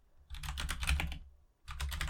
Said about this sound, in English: I feel like every episode now, I have some excuse to put my clacky, clacky keyboard on the podcast. I was just thinking that. I love that keyboard. It's so satisfying.